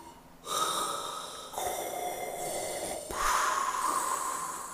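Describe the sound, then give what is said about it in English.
A voice imitates Darth Vader's heavy, raspy respirator-style breathing as deep-breathing practice for sleep, with several long, loud inhales and exhales alternating in a slow, steady rhythm. No one speaks. “Darth he's Vader practicing just his, trying to he's sleep.”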